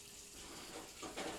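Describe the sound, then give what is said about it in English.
Hot coffee thrown into someone's face splashes out in a steady wet, hissing gush that surges slightly near the end, fairly loud, with no voices. “Hot coffee in your face. Splash.”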